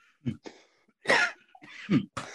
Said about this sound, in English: I'm gonna have a lot of cough today. I have asthma, and I also smoke weed and nicotine, so like, I don't know.